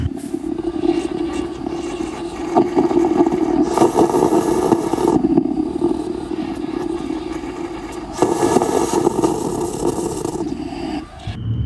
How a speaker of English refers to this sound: sent me 2 important sounds that marked her experience of COVID from indoors, one being a coffee maker.